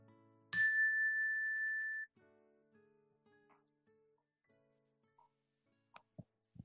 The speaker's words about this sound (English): If you want to, you can place your hands gently on your lap and close your eyes, and we'll begin the meditation with a ring of the chime and end the meditation with a ring of the chime.